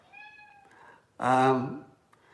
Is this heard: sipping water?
no